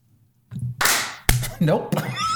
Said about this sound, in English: it seemed like you took a long time to make that clap. I had to clap. Yeah, I had one hand up.